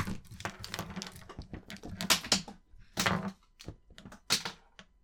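A rapid, irregular burst of light plastic clattering as pens are thrown and skitter across a hard surface, with sharp clicks and taps scattering over several seconds, fairly loud.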